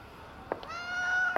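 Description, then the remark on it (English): A cat on a cobbled street at night gives a single drawn-out, slightly rising meow, framed by a couple of brief soft taps, with quiet background hiss and no talking. “I walk past a cat licking itself, giving itself a nice long bath.”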